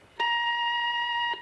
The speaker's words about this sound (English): Hello, you've reached the Happy Horror answering machine. Leave a message at the beep.